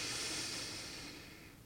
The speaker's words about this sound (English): Maybe a little swaying or back and forth motion, or a little shaking, or a little bit of deep breathing, breathing into your whole body.